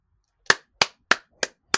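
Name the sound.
person clapping hands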